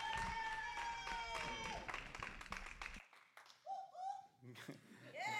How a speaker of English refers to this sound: So who's excited? Come on, get a lot of hand clap. Amen.